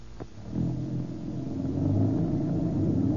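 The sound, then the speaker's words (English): A car engine rumbles low and steady, building slightly in loudness as the vehicle pulls away, with a brief click near the start and no voices. “This is a real bus.”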